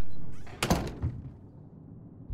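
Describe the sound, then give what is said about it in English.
A door swings shut with one solid thump and a brief rattle of the latch, then a short hollow decay into quiet room tone. No voices are heard. “So, go ahead and close the door.”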